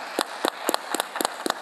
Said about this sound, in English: But the companies that are supposed to be here are here today. So can we clap it up for the sponsors and partners that are here today? Like, seriously.